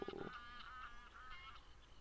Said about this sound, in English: crow, not a raven.